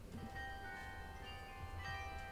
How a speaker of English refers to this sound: Can you? I can. Nice. The bells are pealing.